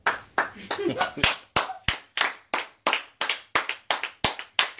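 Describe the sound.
Steady, rhythmic clapping from an audience, roughly three sharp, bright claps per second in an even beat, with a brief murmur of voices at the very start.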